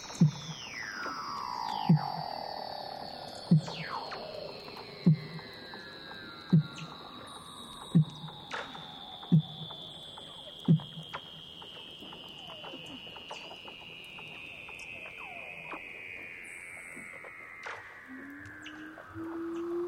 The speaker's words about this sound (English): Before we go, let's visit with some Weddell seals in Antarctica in mating season. Through 6 feet of ice, these are their territorial calls recorded by Douglas Quinn.